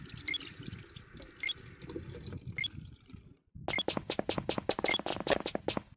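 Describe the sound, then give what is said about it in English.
Water runs from a tap into a bathroom wash basin, a steady splashing rush that stops briefly, then returns as a quick, regular series of sharp spattering drips and splashes. “Bathroom. Wash basin.”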